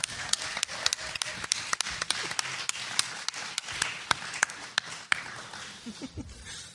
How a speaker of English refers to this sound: All right, how about a round of applause for Team Dharma?